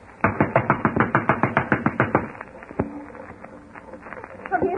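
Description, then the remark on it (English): A rapid, steady burst of about fifteen sharp, loud knocks on an unlocked door, a second try at knocking, with a muffled, old-recording tone, then a few fainter bumps and rustles afterward. “Come in. The door's unlocked.”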